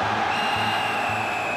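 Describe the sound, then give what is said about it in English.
A referee blows his whistle to end a game as Marseille supporters scream for the end: one long, steady, shrill blast that holds unbroken from start to finish, over a continuous roar of crowd noise with a faint low rumble pulsing underneath. “Eventually, he puts his whistle to his mouth and blows.”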